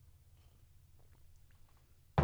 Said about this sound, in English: So a little sip of coffee here. Oh, yeah.